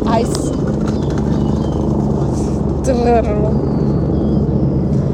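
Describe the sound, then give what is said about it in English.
Several helicopters drone steadily in the background, a continuous low, rumbling engine wash lasting the whole stretch, with a brief voice-like sound rising over it midway. “We got a chopper in the background. A whole lot of choppers.”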